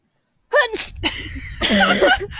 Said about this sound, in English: I'm probably going to sneeze now from the dog hair.